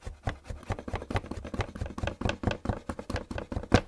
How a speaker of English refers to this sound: First, you're going to begin with some knife work. By the way, these instructions are for one big bowl of Gucci noodle salad. So, okay, let's start by chopping up a quarter of a white onion.